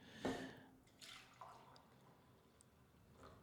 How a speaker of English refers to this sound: Well, let's start off with our classic tradition, pouring some brews.